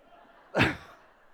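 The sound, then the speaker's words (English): A single sharp, breathy intake of air, fairly loud, as a speaker gasps to catch their breath after a long stretch of talking, with quiet room tone before and after. “Now, like I say, that was back in the year 2000, so that's, gotta catch my breath.”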